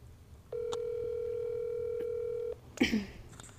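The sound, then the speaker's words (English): A telephone dial tone, heard while placing a phone call to someone's dad, holds one steady, fairly loud pitch for about two seconds, then cuts off abruptly and is followed by a brief, sharper burst of sound. “I said, let me call my dad and see that's where I messed up.”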